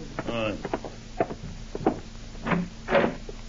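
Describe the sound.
A door is opened to somebody at the door with a few dull clunks and a rattling latch. A brief murmur of voices mixes in among the knocks.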